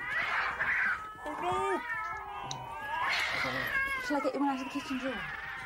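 Cats yowl and caterwaul while mating, in long, wavering, rising and falling wails, several cries overlapping and continuing loudly through the whole stretch.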